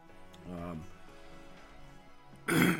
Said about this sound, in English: I mean, I still don't have as good a smell as I used to have, and but man, I still have this stupid persistent cough from time to time.